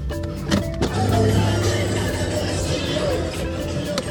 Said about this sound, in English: Here comes a car.